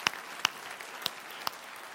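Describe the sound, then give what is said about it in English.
An audience applauds for the military and their families, with veterans present, in a soft, steady patter, with a few sharp claps ringing out above the wash. No one speaks while the clapping continues. “Man, let's just clap for our military and their family.”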